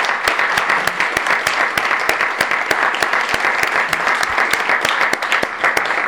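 Steady audience applause at a literary reading for The Rattling Wall issue 4, honouring its illustrator and art director, fills the whole stretch, many hands clapping in a dense, even patter with sharper individual claps popping out irregularly, loud and sustained with no talking.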